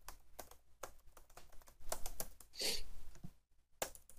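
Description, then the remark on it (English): Loud, clacky typing on a computer keyboard, a quick irregular run of sharp keystrokes, with a brief heavier burst midway before the tapping resumes. “It's a loud keyboard.”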